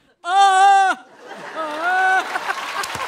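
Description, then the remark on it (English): A person imitates a screaming goat, letting out one loud, strained bleating cry, then a second quieter, wavering bleat against faint background noise. “Last one, screaming like a goat.”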